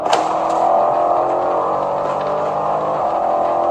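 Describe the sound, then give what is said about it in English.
A car engine roars, loud and sustained, as the vehicle accelerates away with a steady droning whine. No voices are heard. “Get in the car. Go, kid. Go now.”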